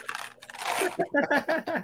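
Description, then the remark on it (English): Crinkling and crunching of someone eating Mike and Ike candy fills the first second with dense rustly noise, followed by a few short voiced bursts that sound like muffled talking. “Are you sponsored by Mike and Ike's? Nope. No, you should maybe get a sponsor for them. It's coming in loud and clear on the podcast”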